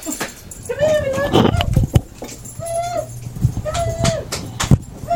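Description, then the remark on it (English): Several dogs whine and whimper in repeated high, drawn-out cries, mixed with short sharp barks and clattering noise. It is fairly loud, with faint voices in the background. “Dogs everywhere. Dogs! You didn't shut the door.”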